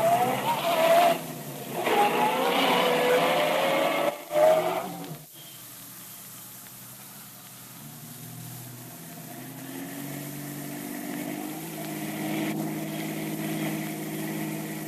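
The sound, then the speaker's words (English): A taxi's engine hums and revs steadily in heavy city traffic, rising in pitch during the first few seconds, then settles into a lower droning rumble as traffic noise continues in the background. “Traffic sure is heavy today.”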